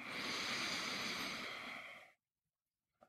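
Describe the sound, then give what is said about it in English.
A long, steady, deep inhale through the nose during a guided breathing exercise, airy, lasting about two seconds before stopping abruptly into silence, with a faint click at the very end. “Just one more time, breathing in through the nose.”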